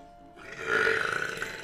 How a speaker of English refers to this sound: Damn, son! I never heard a burp.